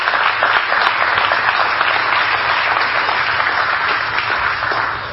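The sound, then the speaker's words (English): An audience at Grace Chapel applauds steadily in thanks for men and women who gave the ultimate sacrifice, a dense wash of many hands clapping at an even, loud level for several seconds before easing slightly at the end, with no voices standing out. “So on behalf of Grace Chapel, I just want to give a very loud thank you and just a round of applause for what this weekend is.”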